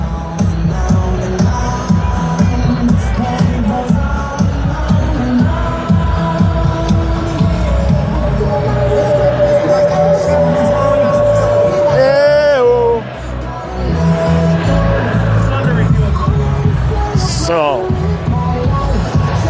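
football stadium crowd noise

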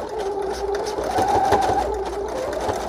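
sewing machine stitching

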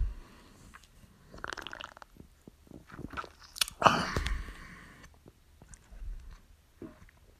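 beer can opened

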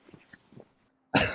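dog making noise

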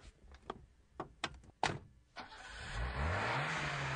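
car engine revving

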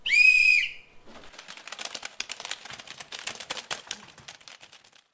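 whistle blown

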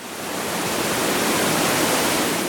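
waterfall

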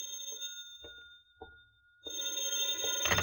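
telephone ringing

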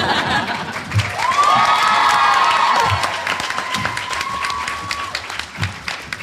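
sparse audience clapping

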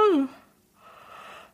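a yawn

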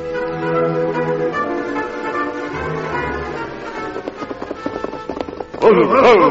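horses galloping

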